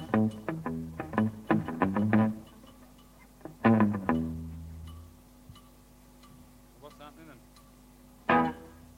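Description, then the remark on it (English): Short vocal bursts ring out through a speaker with a heavy echo effect, each one trailing into repeating, fading reflections, with quieter gaps between clusters. “trying to get the echo.”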